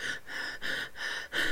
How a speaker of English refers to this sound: Already on edge, she jumps and gasps. Stopped in her tracks. She's breathing.